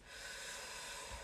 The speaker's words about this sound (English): Breathe in.